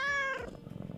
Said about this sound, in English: So cats alter their voices to ensure maximum attention will be given to them by us, by making sounds in the same wavelength and same pitch as a crying child. Oh, I see. So with your meows, you're manipulating me.